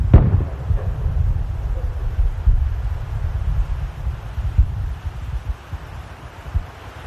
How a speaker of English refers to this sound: Hear how intense it is? Big guns. Big guns right up to the very last second. And you'll hear them fade down. And you'll hear some rifle shots.